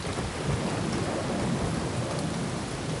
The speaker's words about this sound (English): Across the vale at the peak where Lighthawk stood came a sudden downpour.